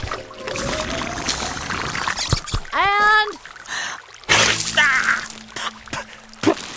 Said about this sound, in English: I'm just going to squirt it, dispense it from this water extractor into this plastic bag.